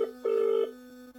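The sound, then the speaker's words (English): An outgoing phone line's ringing tone: a steady electronic burble repeating in short pulses over a low continuous hum, moderately loud and clear, with no one speaking. “Who are you ringing?”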